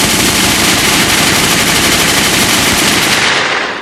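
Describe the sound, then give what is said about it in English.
A loud burst of rapid automatic gunfire, shots blurring into a continuous rattle for several seconds before cutting off, with no voices. “Listen, can we get a few gunshots?”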